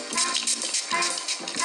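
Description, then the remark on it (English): Several quick hissing bursts of a fine rose water mist spray, an MV Rose Hydrating Mist, airy and bright, with short pauses between pumps and no talking. “Rose water spray.”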